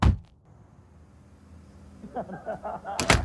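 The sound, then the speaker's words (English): A door thuds shut with a sharp impact, then a quiet stretch with faint murmuring before another solid bang near the end. “your dad just opened the door. Get the hell out of the car.”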